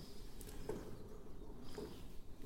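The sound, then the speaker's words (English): Water at a steady rolling boil with two eggs in the pan, timed for a 10-minute boil, a soft, continuous low bubbling with a few faint pops and taps scattered through it. “I can hear them bubbling away in there.”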